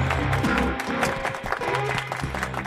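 Steady audience applause, a dense wash of many hands clapping at once, loud and sustained for a few seconds, with a faint low hum of music beneath it.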